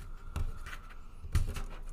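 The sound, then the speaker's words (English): Fingernails scratch and pick at a Christmas gift package to open it: a few short, dry scraping bursts separated by quiet moments, with no voices. “We got to open this very carefully, I think.”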